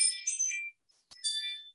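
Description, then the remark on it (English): A home alarm system plays a bright electronic alert chime early in the morning, signalling that somebody is outside: two bursts of high, tinkling tones separated by a short pause and a faint click, with no voices. “Alarm system says somebody's outside.”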